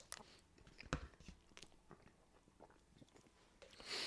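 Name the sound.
chewing food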